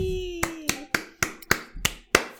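A single pair of hands applauding: about eight sharp, crisp claps in a steady, even rhythm, following a brief high vocal cheer at the start.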